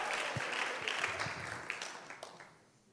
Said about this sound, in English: Un aplauso al Señor de la gloria. Give an applause to the Lord.